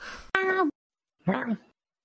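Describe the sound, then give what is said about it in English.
A cat meows twice: a short rising-and-falling meow, a brief pause, then a second softer, lower meow. No one speaks over it. “I didn't hear your cat there for a little while.”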